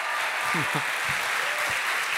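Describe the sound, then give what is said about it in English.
A crowd at a live interview event with Edward Snowden applauds with steady, dense clapping and some cheering, while a few short voice sounds rise above the sustained noise. “I hope you can hear that they're cheering.”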